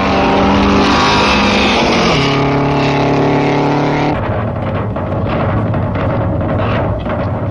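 Loud vintage racing car engines roar as a blue French car battles American cars in a road race, their droning pitch dropping sharply twice as cars pass, followed by a rougher, rumbling engine noise, with no voices.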